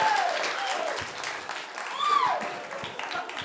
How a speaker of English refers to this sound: Yay. That was a nice groan applause.